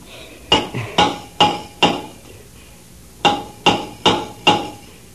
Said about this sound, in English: It's a rescue diver working on the outside. You take the hammer and answer the signals.